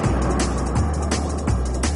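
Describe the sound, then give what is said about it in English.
An overground train rumbles past, a loud, steady low roar with rhythmic clacks recurring every second or so, filling the whole moment with no voices. “Well, I guess it's actually train. It's not underground.”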